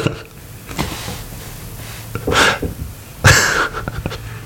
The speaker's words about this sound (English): There's the panic breathing.